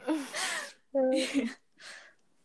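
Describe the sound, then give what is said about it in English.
A voice lets out three sharp, breathy gasps in quick succession while reading a book, each a short voiced intake, the last one softer and fainter than the first two. “She gasps when she reads books.”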